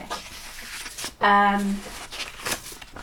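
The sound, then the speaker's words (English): Paper rustling and crinkling as a man folds a sheet up, in several soft scratchy bursts. A brief voiced hum or tone cuts in partway through. “Sorry, he's folding the paper up.”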